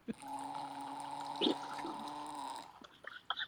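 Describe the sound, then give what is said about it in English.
Wine poured through an aerator gives a steady, whistling, gurgling tone for about two and a half seconds, with a brief splashy burst midway, then trails off in a few sputtering drips. “could you pour a little bit and then we'll use that in the outro for your aerator sound?”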